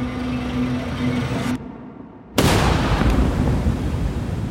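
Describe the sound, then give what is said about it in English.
Distant fireworks boom in a dense, rumbling roar, heard from a quiet street with wind whistling through palm trees, fade into a brief lull, then erupt again with a sudden loud blast that keeps rolling to the end. No one speaks. “The street was quiet, except for the whistling of the wind through the palms and the distant fireworks.”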